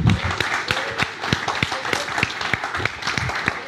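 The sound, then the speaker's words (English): Audience applause as a speaker is called up onto the stage: dense, steady clapping from many hands, a continuous crackling patter of sharp claps at a fairly even loudness throughout, with faint voices mixed in underneath. “Let's have a massive round of applause”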